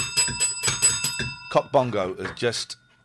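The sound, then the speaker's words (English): A small hand bell rings, its bright metallic tone sustained and shimmering for a few seconds while people talk loudly over it, then fading out at the end. “Oh, my bell's crap.”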